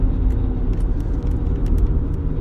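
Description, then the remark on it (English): An old, beat-up Mazda Miata with racing mods revs loudly and steadily, a deep throaty hot-rod-like drone with brief faint ticks and rattles on top and no voices. “I was distracted by what was supposed to be a crotch rocket revving.”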